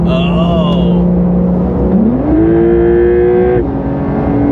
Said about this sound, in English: Oh, yes. Dude. Man. All right, for all of y'all watching, we got up to 60 miles an hour really quick there. Really fast. Yeah, really quick sprint to 60 right there, because we don't break the laws here.